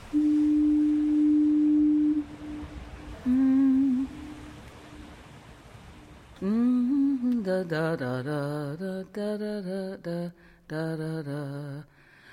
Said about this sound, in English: Of course, this isn't really the sound of fog. Fog is something you can't hear on the radio. This is a foghorn, a thing that evolved entirely because of fog. So it's kind of like the voice of fog.